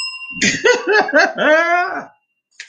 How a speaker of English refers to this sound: Got my bell in my hand, I'm ready.